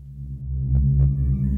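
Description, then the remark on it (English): A strange, steady low hum drones loudly from a steel presentation orb, with a faint pulsing throb and two brief warbling swells midway. No voices. “The steel presentation orb gifted to me by Teffington began to emit a strange hum.”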